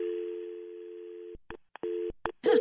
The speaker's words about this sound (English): I'm going to conference her in right now. I just put your call on hold. And you probably can hear that.